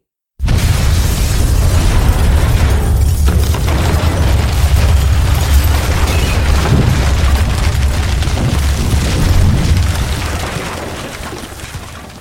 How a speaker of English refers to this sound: I saw the fireball rise out of Vale's boat.